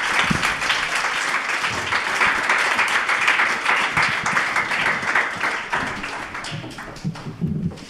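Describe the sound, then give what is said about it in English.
A crowd applauds steadily for the full stretch as presenters go back to their seats, a dense wash of many overlapping claps at an even, loud level, with a few faint voices surfacing toward the end. “Can you give them another round of applause as they go back to their seats?”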